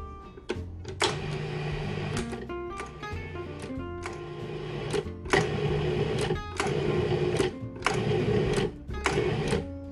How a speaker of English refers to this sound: Put the lid back on my food processor and give this a couple of pulses.